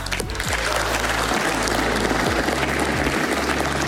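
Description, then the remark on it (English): Republican senators clapping in the Senate as the Tax Cuts and Jobs Act passes, 51 yeas to 49 nays: steady, dense clapping, a continuous crackling wash of applause at an even, fairly loud level throughout, with a low hum underneath and no voices. “Republican senators still clapping.”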